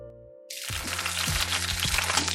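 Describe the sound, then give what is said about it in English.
A 300-gram Belford Galloway rump steak sizzles loudly on a hot plate, a dense steady crackle and hiss that bursts in after a brief hum and keeps going, with small pops throughout. “That sound that you can hear is 300 grams of Belford Galloway rump steak,”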